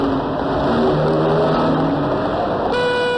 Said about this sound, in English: No rest from danger, though, because all around us is that deadly daily danger, traffic.